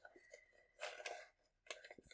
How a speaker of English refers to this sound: Would you do me the kindness of pulling another piece of paper from the grab bag, please? Yes, here we go.